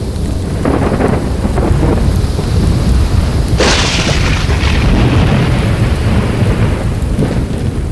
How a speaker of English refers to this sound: With a tremendous boom and a searing flash of white, the storm broke itself over the knees of the mountain.